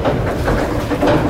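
A steady, loud mechanical rumble and rattle from an old steel service elevator descending fast underground, past 1,000 and 2,000 feet, with a deep low roar and a grinding, train-like clatter throughout, no voices.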